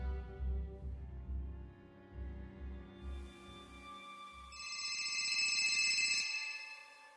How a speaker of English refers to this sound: The phone is ringing. I pick it up. Das Handy hat geklingelt und ich habe abgehoben.